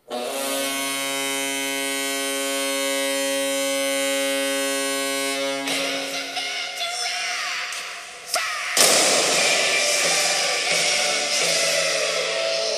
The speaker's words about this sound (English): It's time to fire the cannon.